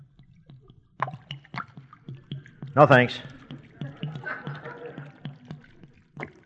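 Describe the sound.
Liquid pours and splashes for a couple of seconds as a highball drink is poured into an oil drum at a bar, with faint drips and gurgles, while a man speaks briefly over it.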